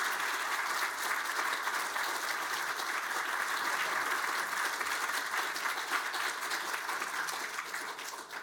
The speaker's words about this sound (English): Another round of applause for our speaker.